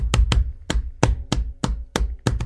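Someone pounds on a printer that is not printing, with about eight loud, sharp thumps in an uneven rhythm, some landing in quick pairs, each one ringing briefly before the next blow. No one speaks.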